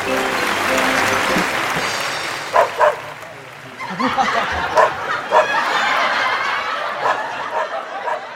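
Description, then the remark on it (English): A dog, Professor Jocko, billed as the world's smartest dog, lets out several short, sharp barks, spaced irregularly, during a trick act at a show in Cairo, over steady audience applause and scattered laughter, with a crowd murmuring throughout. “Well, I'll say that is one clever pooch. That dog does tricks everywhere.”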